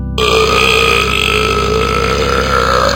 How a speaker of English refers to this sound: One meal, too much onion, I'm shooting burps like a gunman. Left, right, forwards and backwards, upsetting all of the blackbirds.